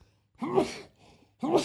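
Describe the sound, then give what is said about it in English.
A sneeze: a breathy, voiced burst, then a quieter pause and a second sharp, noisy burst that cuts off at the end. Both are fairly loud, with no talking alongside. “Bless you.”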